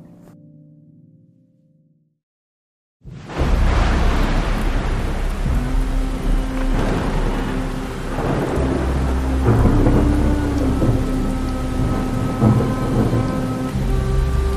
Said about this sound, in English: There's a storm coming.